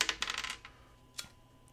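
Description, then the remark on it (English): Dice are rolled on a table: a rapid cluster of hard clicks and rattles as they tumble and skitter across the hard surface, settling after about half a second, followed by one more sharp click. “Dice time. Aimee gets to roll this time.”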